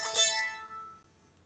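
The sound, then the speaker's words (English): A mobile phone ringtone for an incoming call from the speaker's son chimes once, a bright, many-toned sound that is loudest at the start and then fades away over about a second. No one speaks. “That's my son ringing. I didn't realise the phone was there.”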